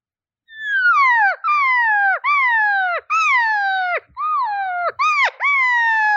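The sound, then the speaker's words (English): An elk cow answers a bull that tells her to come over, calling in a quick series of about seven loud, nasal mews, each one sliding down in pitch, with brief pauses between them and no other sounds. “Here's the sound she uses right here.”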